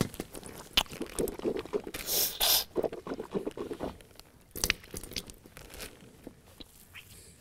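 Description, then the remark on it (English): Wet sloshing and splashing as someone rinses their mouth and nose with a little water during wudu ablution, in a series of short, uneven bursts with brief pauses between them. “I've used, again, little amount of water to wash my mouth and to wash my nose.”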